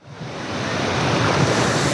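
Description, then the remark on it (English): Ocean surf roars steadily on a beach in San Diego, where a summer camp gives kids a chance to surf; a broad rushing wash of breaking waves that swells up from quiet and holds loud, with no voices. “Reporter Kitty Alvarado takes us to a summer camp giving kids a chance to ride the waves.”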